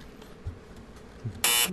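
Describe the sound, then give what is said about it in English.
A harsh, loud buzzer blares suddenly near the end, a dense harmonic drone lasting about a quarter second after some faint background thumps, like a game show's wrong-answer buzz. “The buzzer says no.”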